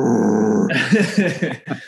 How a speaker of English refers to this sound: My one of my dogs is also growling very well. Oh, yeah. That's, she always does. She thinks I think someone's at the door or something.